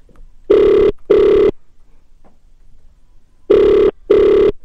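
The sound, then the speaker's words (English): A phone line rings back on an outgoing call to a construction supervisor, in two double bursts, each pair of loud, steady buzzing tones separated by a few seconds of near silence, with no one speaking. “So that's his number there. Let's call him.”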